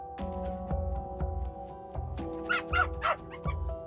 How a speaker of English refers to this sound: There's a chatty small dog inside, so we head outside to my old Honda hatchback to talk about Lisa.